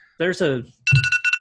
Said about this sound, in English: That is startling, man. Alarms are amazing.